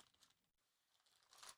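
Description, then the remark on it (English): Crinkly plastic bag holding a Festivus pole rustling as it's pulled open, with a brief pause and then a louder burst of crackling toward the end; no one speaks. “And the pole itself is in a plastic bag.”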